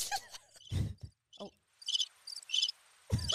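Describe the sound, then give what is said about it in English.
Crickets chirp in a few quick, high-pitched pulsing bursts against a quiet background, with some brief low thumps and rustles at the start and end. “It's so funny because when we talk, when we like were on the phone, when I got this, we're like, yeah, we like had so much to say, and now we're like, now sitting, we're like, now we're like, where's the crickets?”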